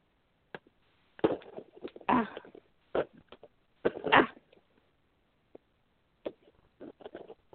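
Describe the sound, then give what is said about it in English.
Rough, rasping strokes of sawing through a cardboard box to open it come in several uneven bursts separated by short pauses, followed by a few softer scratchy scrapes. No one speaks. “Oh, I hear a sawing motion.”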